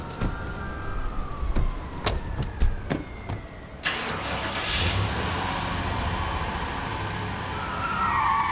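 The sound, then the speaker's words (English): A car peels away with a brief squeal of skidding tires, its engine and road roar rising loud after a few sharp thumps like doors slamming as people pile into the car. “Everyone, pile in quick in my car.”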